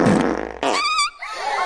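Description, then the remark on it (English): A loud, drawn-out fart from the character Mrs. Elephant that opens with a low, rough buzz and then turns into a squeaky, higher-pitched rasp before trailing off, with no talking over it. “Oh, dear. Pardon. It was a toot.”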